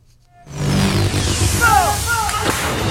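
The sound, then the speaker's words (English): Artillery fire from Taiwanese military live-fire drills on outlying island counties erupts after a brief quiet moment: a loud, sustained booming roar with deep rumble and faint whistling streaks riding over it, continuing steadily to the end. “a closer look at the announcement reveals that other outlying island counties will also be included in the live fire drills.”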